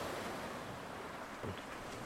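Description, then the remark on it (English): Ocean waves roll onto the shore in a steady, loud rush of surf, with a gentle swell near the middle and some wind mixed in. Nobody speaks. “Seven great waves came rolling into shore, waves of crimson and rose and gold, and on the seventh rolled the sea spirit.”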